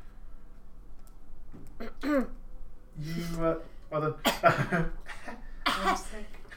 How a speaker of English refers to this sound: you are calmed, and again, start to slowly but surely feel a tickle at the back of your throat, and start coughing again. This time not so like incapacitating, but you have a slight tickle at the back of your throat that you can't seem to get rid of.